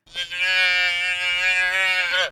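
A single sustained, strained cry from a newborn eland calf, an African antelope, played back through a speaker in a playback trial: bleat-like and harmonic-rich, holding a steady pitch for about two seconds before cutting off, loud and alone.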